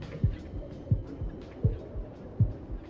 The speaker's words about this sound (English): I gave him a heartbeat.